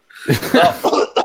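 A person acts out a wet, sputtering cough, several quick, loud bursts with a gurgling, choking edge, as though hacking up blood.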